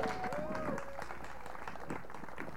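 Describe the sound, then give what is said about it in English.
Steady applause from a church audience at a morning service, welcoming a visiting pastor: a dense crackle of many hands clapping at even loudness throughout, with a faint tonal whistle or feedback early on and scattered voices mixed in. “Let's give a round of applause to Pastor Darren from Sound Life.”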